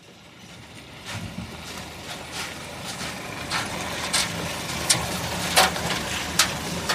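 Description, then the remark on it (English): A small car careens along a very rough, bumpy road at 2 a.m.: a steady engine and road rumble runs throughout, broken by sharp rattling jolts every second or so, recorded from inside the vehicle. “It's 2 a.m., and I find myself careening along the bumpiest road I've ever seen, in the smallest car I've ever been in.”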